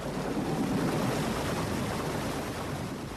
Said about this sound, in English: So we're in the lock, and the gate is closed behind us, and the sluices have opened, and the water is kind of gushing in, which means the boat is rising up in the lock.